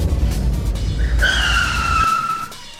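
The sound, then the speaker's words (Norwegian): A car skids to a stop while parking, with a loud, sustained tire squeal over rumbling engine noise, the screech lasting about a second before the engine cuts out abruptly. “Perfekt parkering hver gang.”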